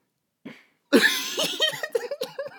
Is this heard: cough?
yes